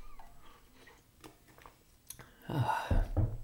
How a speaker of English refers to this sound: Grab a sip of water here.